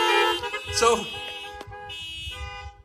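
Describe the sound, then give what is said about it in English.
Several car horns honk at once in a loud, overlapping chorus of sustained blares with a few short toots mixed in, over a low rumble of idling engines. “Come on, honk your horns if you believe it, right?”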